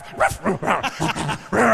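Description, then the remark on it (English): A person mimics about eight dogs locked up in a shed barking, firing off a rapid run of about six or seven loud yaps and woofs that tumble over one another with no pauses. “We could just hear like 8 dogs in a shed that'd be locked up.”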